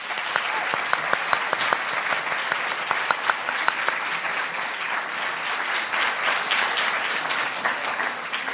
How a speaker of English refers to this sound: Please join me in giving our panel one more round of applause.